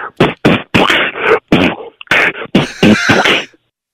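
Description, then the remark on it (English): A single voice beatboxing over the phone, a quick rhythmic pattern of punchy, breathy bursts, about ten hits over a few seconds, with a thin, band-limited tone, then stopping abruptly. “You know how to beatbox? Oh, I was a champion in high school.”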